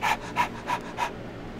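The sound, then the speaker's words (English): A person imitates a dog-reactive dog's changed, heavy breathing on seeing another dog on a walk, with four quick, evenly spaced breathy huffs, fairly loud, followed by a short stretch of quiet. “when breathing changes when seeing another dog on a walk”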